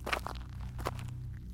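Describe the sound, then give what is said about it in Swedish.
Footsteps of a man walking a bit further: a few soft, scuffing steps at an uneven pace, heard alone over a steady low hum. “Han går fram en bit till.”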